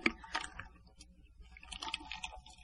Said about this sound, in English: Actually, it's a drink of my iced tea. Y'all know I love my iced tea by now.